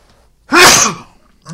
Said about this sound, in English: Sneezes all around.